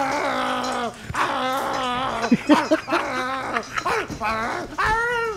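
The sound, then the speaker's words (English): A person vocally imitates a dog while another person punches a pillow, making a series of high, wavering whimpers and yelps with short breaks between them, fairly loud. “I think that's me making those noises while you punch a pillow.”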